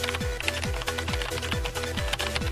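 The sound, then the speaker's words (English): Rapid, dense keyboard typing clatters steadily throughout, with a regular thumping low beat pulsing underneath at an even tempo. “Oh, he wasn't done typing.”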